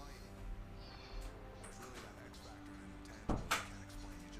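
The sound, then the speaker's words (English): A door shuts with a firm thud followed by a quick second knock, against a faint steady hum; no one speaks. “So let me close my door.”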